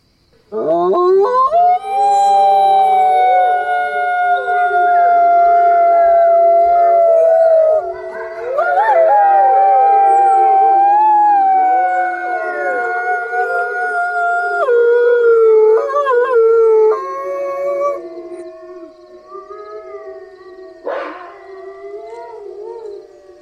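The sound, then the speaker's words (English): A chorus of people in a circle imitates wolves, howling together in long, overlapping wavering tones that rise and fall for over twenty seconds, loud, with no talking. “Everyone, howl on my count.”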